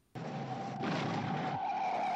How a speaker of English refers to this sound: He must have careered around the corner doing at least 50 miles per hour. It could have been more. The car skidded, burning deep smouldering rubbery kisses into one of West London's hard, cold main roads.